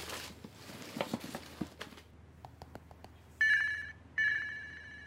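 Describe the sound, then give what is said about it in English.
A burner phone rings in two loud electronic bursts, preceded by soft rustling and a few scattered clicks and taps, with no one speaking. “Where's that burner phone?”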